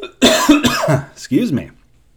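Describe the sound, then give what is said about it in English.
A few harsh, throaty coughs coming in quick bursts with a rough voiced edge before trailing off into quiet. “I'll explain this cough in a bit, too.”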